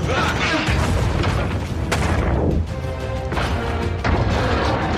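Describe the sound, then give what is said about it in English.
A loud, relentless barrage of heavy punches and crashing impacts from a film clip of giant robots (Jaegers) fighting, booming metallic smashes piling on top of each other with barely a pause, dense. “We have a clip, and because they've not released many clips of actual dialogue from this film, for reasons we'll get to, this is what passing for a clip. It's mostly punching.”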